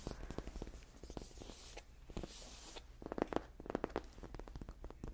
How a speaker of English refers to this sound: And just sort of drape it over my shoulders so I can tap the tag.